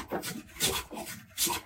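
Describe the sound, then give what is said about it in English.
A hand plane scrapes along wood in about four rhythmic, rasping strokes, each a brief breathy swish with a bright hiss, with no talking over them. “It can be used to plane wood nice and smooth.”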